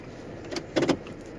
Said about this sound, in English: What's up, everybody? I'm in the car and I'm going to work.